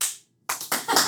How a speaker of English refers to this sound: A smattering of applause.